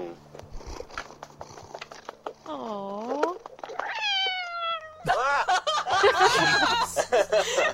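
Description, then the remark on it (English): A cat meows, a couple of drawn-out, wavering cries that build into loud, agitated yowling near the end as it is patted on its bottom, with people's voices and rustling in the background. “I'm trying to get the cat to say hi too.”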